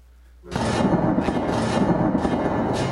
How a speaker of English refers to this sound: Give me a little bit of stormy weather.